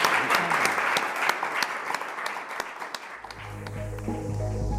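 A sizable audience at the end of an Institute for Government (IFG Live) evening event applauds with steady, dense clapping for about three seconds; the clapping thins as a low musical sting fades in and takes over.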